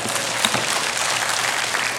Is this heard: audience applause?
yes